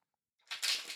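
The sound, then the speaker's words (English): A brief, crisp papery riffle of tarot cards being shuffled, starting after a short silence and swelling into a dense, bright flutter that continues to the end, with no voices. “Just connect to the cards by listening to the sound of them being shuffled and trusting that this message will resonate no matter the future place or time to which you listen to this episode.”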